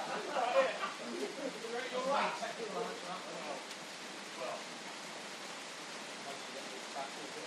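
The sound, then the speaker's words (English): Heavy rain pours down, intensifying, at an outdoor pitch during a match between Tuffley and Stonehouse, a steady, dense hiss, with muffled voices talking over it during the first few seconds before the downpour carries on alone. “Golden opportunity goes wasting for Tuffley as the rain just intensifies again a little bit more.”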